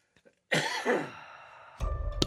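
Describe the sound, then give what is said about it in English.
A sharp, loud cough, followed after a short pause by a second rough, throaty burst; no one speaks. “Same time with a cough.”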